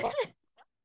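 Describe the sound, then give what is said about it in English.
A single short, explosive sneeze, fairly loud, followed by a brief faint sound a moment later. “Gesundheit.”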